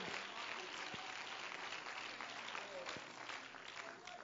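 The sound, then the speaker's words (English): A crowd applauds steadily in praise to the Lord, a dense wash of many hands clapping at once, sustained for several seconds. “Come on, let's give a hand clap of praise unto the Lord.”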